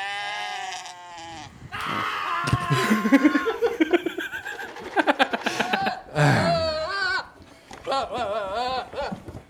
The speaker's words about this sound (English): So while we're listening to goats scream, oh, there we go, it's over.